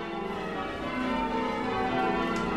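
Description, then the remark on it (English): The church bells of St. Michael's in Chagford ring steadily, their overlapping tones blending into a continuous, shimmering wash of sound at moderate volume, with no voices present. “John Bint, one of the church bell ringers, has compiled a history of the church's bells.”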